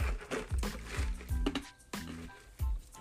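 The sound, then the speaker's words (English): Ice being crunched between the teeth: about six crisp, crackling bites spaced roughly half a second apart, each with a wet, squishy edge, and no talking. “If you hear crunching right now, you guys,”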